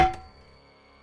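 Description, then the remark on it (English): A single loud metallic clang of a skillet striking a man on the back of the head, with a sharp hit and a bright ringing tone that fades away over about a second. “He got up, went into the kitchen and grabbed the skillet. Upon returning, he knocked Mark out with a blow to the back of his head.”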